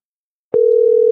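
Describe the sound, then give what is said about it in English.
Silence, then a soft click followed by a steady, fairly loud telephone ringback tone on an outgoing call: a continuous low electronic hum-like beep heard through the phone line, with no voices present. “We got the ringer.”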